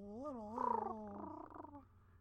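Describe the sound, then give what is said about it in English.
A person imitates a purring creature with a rolling, fluttery vocal trill lasting about two seconds, rising and falling in pitch, fairly loud with no other sounds. “And this little dude fucking just like comes up. Purring at you, basically.”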